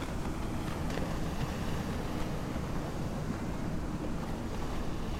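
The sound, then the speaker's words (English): A boat approaching over open water, its steady low rumble blended with constant wind and lapping waves, holding an even loudness throughout with no voices. “Because I can see a boat!”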